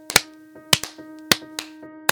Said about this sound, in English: Okay, so let's clap and then we'll start things off. All right. 1, 2, 3.